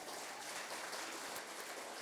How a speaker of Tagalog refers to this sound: Kaya huwag po nating tipirin sa palakpak ang ating Panginoon. Amen? Ang tipid-tipid nyo.